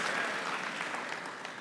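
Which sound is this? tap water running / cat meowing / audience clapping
audience clapping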